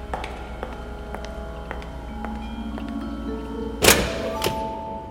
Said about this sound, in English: What's going on with the guards in that room? It looks like Jack is beating the holy hell out of them.